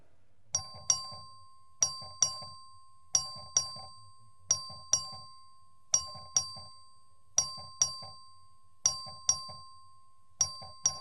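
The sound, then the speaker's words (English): An electronic vote bell in a legislative chamber rings for a recorded vote on the adoption of resolution HCR 49, in a steady repeating pattern, paired ding-dong chimes every second or so for about eleven seconds, clear with no talking. “The clerk will ring the bell.”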